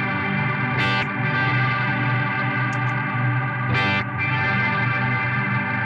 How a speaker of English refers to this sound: Sometimes I feel like it's going backwards. I feel like the reverb is being reversed on me.